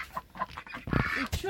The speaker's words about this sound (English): I'm sorry, I'm getting really distracted by the ducks. Yeah, we picked a really bad place for this. Like, have you shown the people the ducks? The ducks.